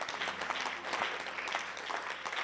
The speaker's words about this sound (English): The pastor is clapping. Give it up to him. Give it up to him. He's clapping.